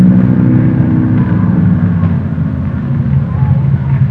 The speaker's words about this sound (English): Man, the engine sounds nice, doesn't it?